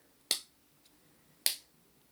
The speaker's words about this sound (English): And we can work out the beat of a song by pretending each clap is the steady tick-tock of a clock like this. Let's clap to the beat.